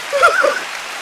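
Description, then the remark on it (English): An audience applauds in a dense, steady patter of many hands clapping at once, with a few brief voices calling out near the start before the clapping carries on evenly. “Y'all keep clapping.”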